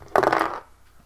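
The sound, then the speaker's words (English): A quick clatter of dice tumbling across a hard tabletop, rolled for a gun attack in a tabletop game, a rattling burst lasting about half a second before settling into quiet. “I'll blow on your dice too.”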